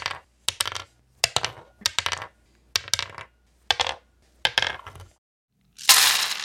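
Dice are rolled one at a time onto a hard surface in a series of sharp rattling bursts about half a second apart, ending in one longer, noisier rattle. No one speaks.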